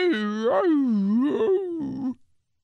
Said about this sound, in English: That one dog sings it on YouTube.